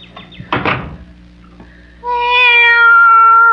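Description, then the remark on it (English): A door knocks and thuds, then after a brief pause a cat lets out one long, loud, drawn-out meow, with no one speaking. “Be quiet, cat.”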